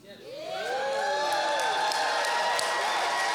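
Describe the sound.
A church audience erupts in a loud, sustained roar of shouts, whoops and cheers, many voices rising and sweeping in pitch together, with some clapping mixed in, holding strong for several seconds.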